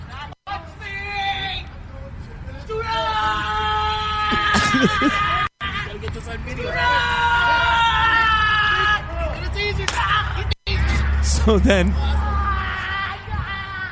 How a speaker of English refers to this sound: So then she's screaming and wailing and all that stuff because she just got tased and put to the ground, okay?